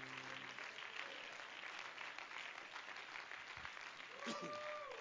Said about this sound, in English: In Jesus' name, could you clap your hands in praise to the Lord?